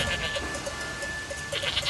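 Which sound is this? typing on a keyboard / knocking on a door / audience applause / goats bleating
goats bleating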